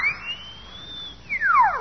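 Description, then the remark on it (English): A whistle is blown in one continuous shrill tone that rises slightly, holds steady, then swoops sharply downward near the end, with no one talking. “Then we'll all come out when I blow this whistle.”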